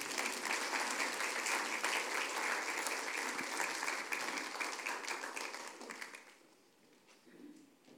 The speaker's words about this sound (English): I'd like to give her a round of applause.